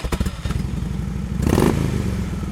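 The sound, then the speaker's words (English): A Harley Davidson motorbike engine idles with a deep, lumpy rhythmic thump, then briefly revs louder before settling back into its uneven chug; alone, with no voices. “Specifically, it's a motorbike, but specifically, it's a Harley Davidson.”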